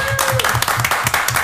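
A short burst of applause from a group for the 2018 winner of the Wooden Spoon, dense overlapping claps crackling loudly over steady low thumps.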